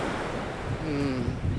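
Steady roar of Atlantic Ocean surf washing onto a beach at the Jersey Shore, a continuous broad rush of water mixed with wind noise buffeting the microphone, with a faint distant tone rising briefly in the middle.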